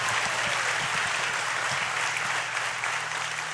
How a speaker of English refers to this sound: Would you give our worship team a round of applause? Aren't they great? Aren't they great?